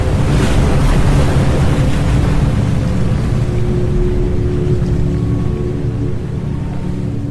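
A loud, continuous roar of rushing flood water, like heavy ocean surf surging, with a steady wash of noise that eases slightly toward the end. No voices.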